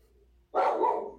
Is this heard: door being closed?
no